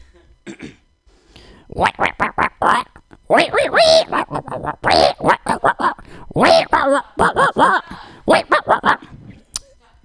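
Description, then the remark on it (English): A person imitates a wolf, letting out a rapid series of short, loud yips and barks with a few longer, howl-like cries mixed in. “It's a wolf. It's a different kind of wolf.”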